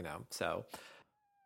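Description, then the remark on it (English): A cat meows in a drawn-out, wavering cry lasting about a second, with the pitch sliding up and down before it stops, leaving a faint steady tone. “Oh, I hear the kitty.”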